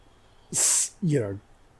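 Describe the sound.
A voice imitates someone snoring awake: a sharp, breathy snort followed by a short, falling groan, loud, with nothing else around it.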